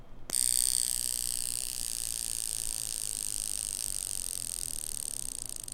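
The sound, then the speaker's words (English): A wristwatch's built-in wrist alarm, set by aligning its inner disc with the hour hand and triggered to demonstrate it, starts abruptly after a brief silence and keeps going as a steady, high-pitched rattling buzz, loud and unbroken until the end, with no one talking. “So that's your alarm.”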